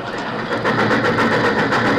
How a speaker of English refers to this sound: Say, that that train was really flying this morning. Yeah, it must have been doing at least 60 through the living room.